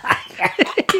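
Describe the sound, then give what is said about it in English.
A quick run of harsh coughs, about five bursts packed into a second, some with a breathy, laugh-like voiced edge. “Choke me. Laughing to me. coughing.”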